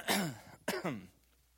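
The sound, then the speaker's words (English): Two short throat-clearing bursts, one right after the other, rough and breathy with a low voiced rasp trailing each, like a held-back cough. The second is slightly shorter, then it goes quiet. “I'm praying that I'm not going to cough.”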